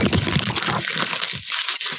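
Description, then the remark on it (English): Bright metallic jingling of keys, a continuous shaking clatter lasting about two seconds, with small clinks tapering toward the end and no voices. “Keys are away.”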